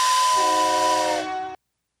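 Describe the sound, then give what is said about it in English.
A loud steam train whistle blasts in a steady, chord-like tone over heavy hissing steam, holding for about a second and a half before cutting off abruptly. “It was like a steam engine train.”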